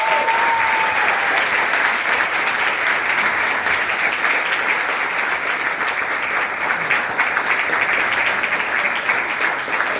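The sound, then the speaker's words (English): Sustained audience applause for Senator Marco Rubio as the Coalition presents him the Hector Barreto Sr. Tributo Award, a dense, steady wash of many hands clapping at a fairly loud, even level, with no voices rising above it. “Applause for him.”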